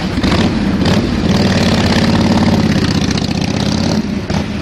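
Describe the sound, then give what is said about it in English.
A motorcycle engine rumbles loudly and steadily, with a low throaty drone and brief revving surges, played from a soundboard as a sound effect with no talking over it. “Honestly, that's like the opposite to what it sounded like because there wasn't a bike going off. No, and then you turned up. He's got that blooming soundboard again.”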